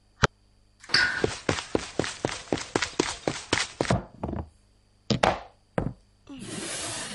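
Running footsteps: a quick, steady run of about a dozen sharp thuds over a rushing background, followed by a few scattered louder bangs and a final burst of hissing noise.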